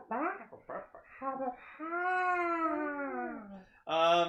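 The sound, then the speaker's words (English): A person imitates a howling dog: a few short yelping syllables lead into a long, wavering howl that slides downward, then a final sharp, loud yelp. “Yeah, he sounds like a fucking dog of wisdom.”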